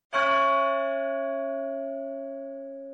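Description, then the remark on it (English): A single loud clock bell strikes once, its deep, rich tone ringing out and fading slowly over several seconds with no other sounds around it. “and the clock boomed out its final chime.”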